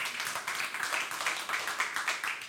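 A church audience claps for God during a sermon, many hands producing a dense, steady crackle of applause with small surges throughout, fairly quiet and with no voices over it.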